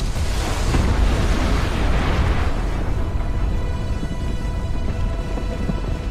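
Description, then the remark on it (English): A deep, thundering roar of a mountain collapsing at its roots, heard from far below, heavy rumble underneath a harsh, noisy wash that stays loud and steady throughout, its crackling upper hiss easing slightly after the first few seconds. “Then far below, a rumbling builds to a roar as the very roots of the mountain collapse.”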